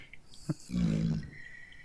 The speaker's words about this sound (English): Thank you for my dog who's sitting next to me right here and snoring.